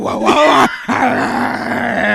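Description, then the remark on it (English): A person voices a dog bark, a loud, strained vocal yelp followed after a brief pause by a longer, drawn-out groaning howl, raspy and mid-pitched. “I'll do a little bark though.”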